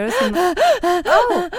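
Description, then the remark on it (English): A person breathes heavily and loudly, a quick series of about five voiced, gasping breaths in and out, with no talking. “I'm just heavily breathing.”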